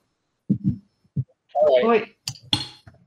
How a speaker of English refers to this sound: And after that, so the glass stopper is quite difficult to open. So you just with one finger you could be able to open it. Just put your finger like this and just push. Oh, you can just push. Wow. Did you feel that? And remove the glass stopper.